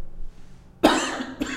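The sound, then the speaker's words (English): A sudden COVID cough from a tickle in the throat bursts out after a brief quiet stretch, followed by a second, smaller cough burst a moment later; no talking accompanies it. “Oh, tickle, COVID cough.”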